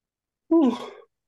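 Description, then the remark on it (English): A single loud yawn, about half a second long, voiced and sliding downward in pitch before trailing off breathily. No talking around it. “I was going to say that yawn is the perfect thing for Morbius.”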